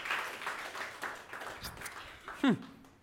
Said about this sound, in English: Come on, give God a clap. Come on, God's awesome.